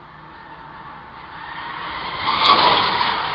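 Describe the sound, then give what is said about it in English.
Anne Heche's car speeds past through a residential neighborhood at probably 80 miles an hour, its broad roaring whoosh of engine and tire noise building steadily, peaking sharply, then easing off slightly. No voices are heard. “Here's the clip of Anne Heche's car zooming by at a rapid, probably 80 miles an hour through a residential neighborhood.”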